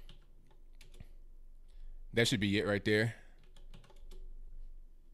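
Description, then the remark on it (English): Soft, quick computer keyboard clicks tap away in irregular bursts as a link is put into a chat box, briefly interrupted by a man speaking a short sentence before the faint typing resumes. “The campaign ad, if you just search for it, it'll be on Google, but I'll put a link right now in the chat box so you're able to just get to it right now.”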